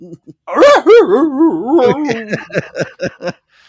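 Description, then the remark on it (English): A dog lets out a drawn-out, wavering whine-bark, then a quick run of short, sharp yips and barks, fairly loud, with no other sounds around. “You know, these two dogs they'll fix it and get us back on the air.”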